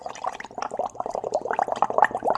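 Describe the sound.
A voice imitates a Keurig coffee machine brewing as someone makes a cup of coffee: a steady, bubbly gurgle with rapid sputtering pulses running for a couple of seconds at moderate loudness, with no words spoken.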